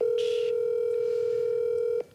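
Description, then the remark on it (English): A steady, loud ringing tone of an outgoing phone call holds one even pitch for about two seconds before cutting off, with a brief burst of hiss near the start; the call goes unanswered and is forwarded to a voice message system. “He's not going to answer your phone call.”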